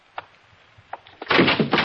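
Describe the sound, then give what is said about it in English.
A door opens: two faint latch clicks in near silence, then a loud, rushing swish and creak as it swings open. No one speaks. “Shh, somebody's by the door.”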